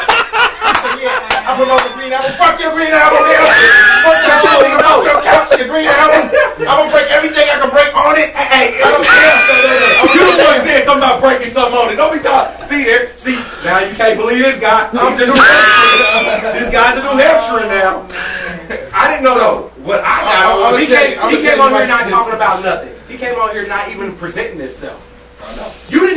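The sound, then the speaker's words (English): A crowd of people yelling and screaming at once, with little kids running in and out, loud and continuous, with high-pitched shrieks rising over a dense babble of overlapping voices for the whole stretch. “You know what I think is so funny is everybody's yelling and screaming and there's little kids running in and out.”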